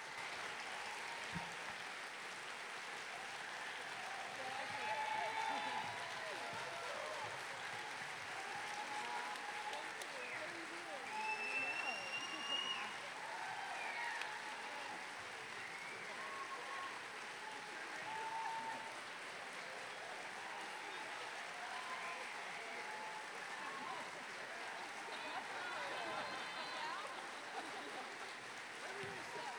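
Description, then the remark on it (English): Sustained, dense applause from a large audience as the storytellers come out on stage, filling the whole stretch at a steady level, with scattered cheers and a sharp whistle rising above the clapping partway through. “We're going to have all of our storytellers come on out right now. Give them a big round of applause.”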